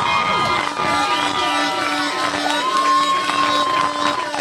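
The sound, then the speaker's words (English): A loud crowd cheers and shouts continuously as a performer's timed routine ends, with overlapping whoops and excited voices rising and falling in a dense, steady roar. “We are down to 10 seconds, and this crowd seems pretty damn happy about it. They're getting ready to go crazy, I'm sure.”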